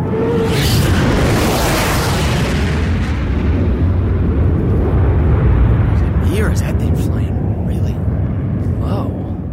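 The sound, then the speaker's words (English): A fighter jet roars overhead, a loud, dense rumble that stays unbroken for the whole stretch, with faint voices buried beneath the noise. “Holy shit, it's a fighter plane.”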